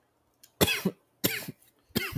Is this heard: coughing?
yes